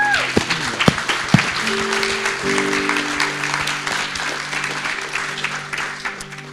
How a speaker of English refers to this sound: Give them a clap.